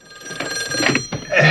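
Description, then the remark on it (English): A telephone rings in a film scene as a town sheriff gets a late-night call, a bright, metallic bell trill, its tone buzzing steadily and then swelling louder toward the end, with no voices present. “So after this, they cut away to the town once again as the sheriff gets a late night call.”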